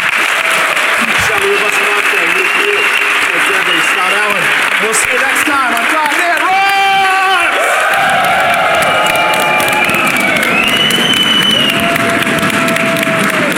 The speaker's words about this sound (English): All right, folks. Well, let's give a great big Dev Intersection round of applause to the panel.